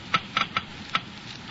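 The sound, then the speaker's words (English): A Geiger counter clicking slowly, measuring the low wear rate of critical engine parts lubricated with new RPM motor oil: about five sharp, crisp ticks spaced irregularly over a second and a half, with a low steady hiss in between and no voices. “You have just heard Geiger counters clicking off the scientific proof that new RPM motor oil is years”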